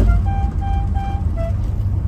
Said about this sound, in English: So let's honk the Dixie horn.